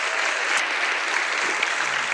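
An audience applauds steadily, a dense wash of many hands clapping at an even, moderate loudness with no voices over it.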